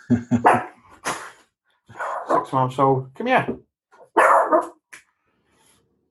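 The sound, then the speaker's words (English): A little Shih Tzu puppy lets out several high, yappy barks, mixed in with a person speaking briefly before and after. “Or just my little puppy there.”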